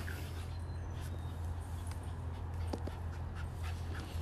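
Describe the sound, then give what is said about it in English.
Dogs whimper softly and pant, with a few short yips breaking through over a steady low electrical hum. No one speaks. “Sorry, I'm trying to make the dogs be quiet.”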